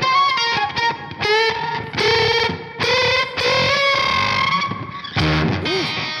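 A loud, heavily distorted electric guitar played through an effects pedal, ringing out sustained, bending notes in several phrases with brief breaks, ending on a lower wobbling tone. No one speaks.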